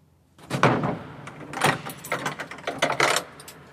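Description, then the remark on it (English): A heavy, strong mausoleum door grinds and clunks open over a few seconds, with rattling metallic knocks and scraping bursts, moderately loud, no voices. “It's a quite strong door all the time.”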